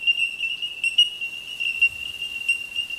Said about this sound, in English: I love the sound of tinkling bellbirds.